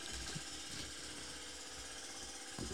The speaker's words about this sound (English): It's a new washing machine.